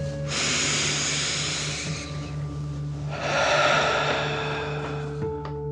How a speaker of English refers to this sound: Remember to breathe in through your nose, filling up your belly, and then out, pretending you are breathing fire. Deep breath in and out.